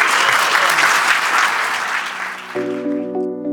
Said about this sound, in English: everyone, round of applause for our panelists.